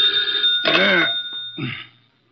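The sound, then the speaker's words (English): An old-fashioned telephone bell rings twice, a longer burst followed by a shorter one, fairly loud over a faint steady background hum. “Oh, dear, who moved that phone?”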